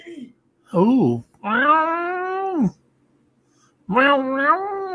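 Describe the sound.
A human voice imitates a cat's meow, making three drawn-out, wavering mewing calls, the middle one longest, with brief pauses between them.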